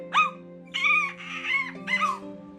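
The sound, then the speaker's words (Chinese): A grey dog gives three or four sharp, high yelps in quick succession as it attacks Empress Lü, loud, each cry rising and falling over a steady low background hum. “当吕后弯下身子想摸摸这只狗时，这只狗突然攻击了吕后。”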